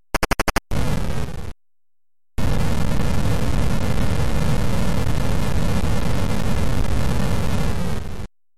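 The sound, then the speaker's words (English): A few rapid clicks, then a short burst of static, a pause, and a long, loud crackling arcade-game explosion rumble with a buzzy electronic texture on the game-over closing screen, explosions taking out parts of a big "the end", lasting several seconds before cutting off abruptly. “But if you lose all your cities, the game will be over, and it'll take you to a closing screen where it has a big "the end" on it, and then the explosions will rumble on the screen and take out parts of the end.”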